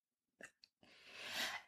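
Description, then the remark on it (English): A single sneeze: two quick catching breaths, then a long, breathy, hissing burst that swells and fades. No one talks over it. “Bless you.”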